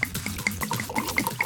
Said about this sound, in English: uncorks it, and starts pouring cups.